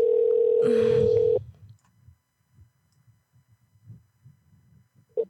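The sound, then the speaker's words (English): A loud, steady phone tone sounds for about a second and a half as a call is placed, then cuts off, leaving faint low thumps and handling noise in near silence. “Call him again.”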